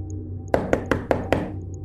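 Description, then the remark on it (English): Five heavy, booming thuds strike a door at night in quick, slightly uneven succession, loud, with a low steady hum underneath and no voices. “The bashing at the door continued.”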